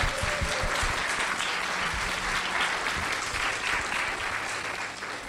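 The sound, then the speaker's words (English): A crowd gives a round of applause to a panel and its moderator, clapping steadily for about five seconds, a dense, even wash of applause that holds its loudness throughout and fades only slightly at the end, with no talking. “If you could please give them a round of applause.”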